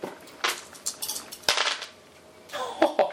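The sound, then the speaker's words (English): Two dice, rolled for shields to absorb damage in a game, clatter and tumble across a hard surface in a series of sharp, bright clacks, with a loud knock midway and a final flurry of rattling hits, and no voices. “Now roll your actual shields to absorb the damage. Which are two dice, I think.”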